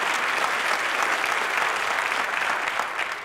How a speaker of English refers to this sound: Okay, if we're going to clap, let's clap. That's pretty cool, isn't it?